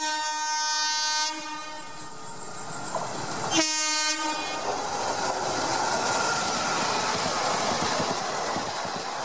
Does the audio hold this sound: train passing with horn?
yes